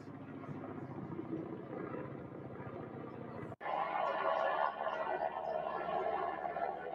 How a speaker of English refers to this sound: I knew wildfire. Next day, you hear the helicopters flying.